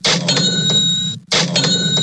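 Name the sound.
cash register sound effect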